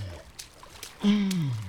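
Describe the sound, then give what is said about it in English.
Water splashing and sloshing in a film's lead-up to its famous iceberg scene, with a few brief bursts of spray, then a steady low tone sets in and slowly slides downward in pitch while the watery noise carries on underneath. “there is a lot of water splashing in the lead up to this next scene”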